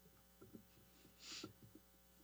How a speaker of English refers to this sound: Let's go with air conditioner.